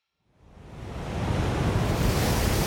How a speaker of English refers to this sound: Gale force winds off the coast of England. Choppy waves, foam blowing in streaks across the water, and a small group of pirate ships that have been fighting to stay afloat and are about to lose.